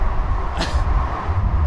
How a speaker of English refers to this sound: God, this is loud. Shouting over the noise of an interstate while we try to figure out where we're going.